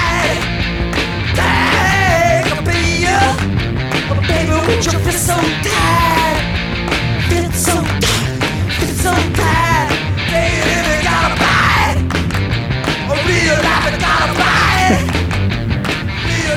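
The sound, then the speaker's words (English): A singer yells hoarsely and urgently over a loud, dense rock band, the strained vocal cries rising above pounding drums, bass and distorted guitar throughout the song. “Yeah, his yells are just, it always sounds like someone's lighting his feet on fire.”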